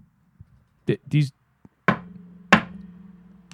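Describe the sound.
A heavy Jack Daniels gift-set drinking glass bangs down twice on a wooden table, two loud knocks with a short ringing decay. A brief voice sound comes just before the impacts.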